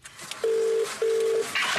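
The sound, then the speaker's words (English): Telephone tones of an outgoing call being placed to return a call: two steady, evenly pitched electronic tones in quick succession, each lasting under half a second, clear over a faint background hiss. “I recorded the phone call when I rang Sam back”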